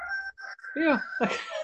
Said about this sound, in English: Well, clearly the cockerel agrees, which is fine.